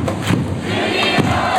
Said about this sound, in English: Once the show was over, there were still several minutes until the game resumed, but that didn't stop the pep squad from starting up the cheers.